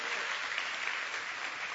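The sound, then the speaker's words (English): A church crowd claps steadily for a pastor, a dense, even wash of many hands applauding at once for a couple of seconds, with no single claps standing out. “a good big hand clap.”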